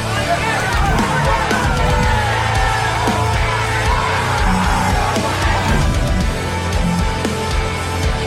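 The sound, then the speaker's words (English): Several wrestlers at the Raising the Roof wrestling duals yell and cheer on their teammates over one another, a loud, steady overlapping din of shouts and encouragement with no quiet pauses. “The guys were yelling back and forth, cheering off their teammates.”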